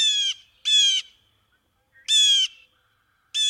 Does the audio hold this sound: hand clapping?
no